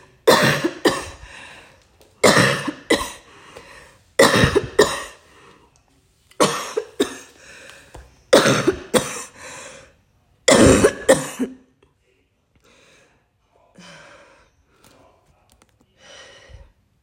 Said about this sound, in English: Cough out in Jesus' mighty name. Cough out in the name of Jesus. Cough out, karabos, satanebos, cough out in Jesus' mighty name. Cough out in Jesus' mighty name.